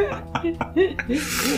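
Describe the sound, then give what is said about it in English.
A few brief voiced murmurs, then a quick airy sniff drawn sharply in through the nose, moderately loud, from a person with a head cold. “Before we do that, please, in case you hear sniffing sounds, it's from my air because cold will not allow me be great.”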